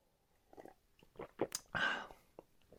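A few soft lip smacks and small sips lead into one loud, airy slurp of coffee, a noisy sucking rush with a thin whistling edge, followed by a faint click.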